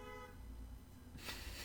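A bus horn sounds one sustained, steady toot for about a second, over a low engine rumble, then cuts off into a burst of hissing noise.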